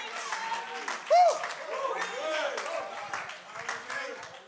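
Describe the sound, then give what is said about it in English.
A church audience claps their hands unto the Lord in a busy, rhythmic patter, mixed with loud voices and shouts that ring over the room. “Oh, let's clap our hands right now unto the Lord.”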